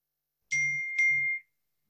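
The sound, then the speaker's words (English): Two quick bright electronic dings from a phone notification, one right after the other, clear with a short ringing tail, and no voices. “I don't have shut off phones. That's my problem here.”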